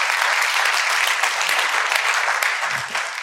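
Steady, dense applause from an audience, a broad crackling wash of many hands clapping at once, holding loud for about three seconds before easing slightly at the end.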